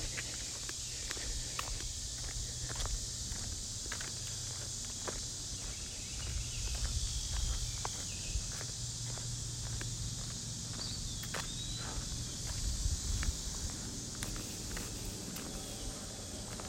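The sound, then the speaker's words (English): Steady footsteps walk past houses along a residential street in York County, Pennsylvania, on trash day with lots of trash cans out, a regular rhythm of soft scuffs over a constant high hiss of insects and a low rumble of background noise, with no talking. “Trash day here, walking by some houses.”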